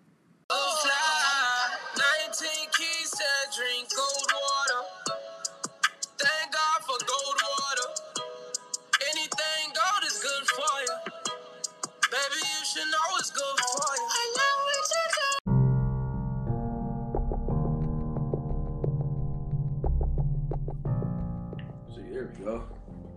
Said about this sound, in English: listen to this song by … called …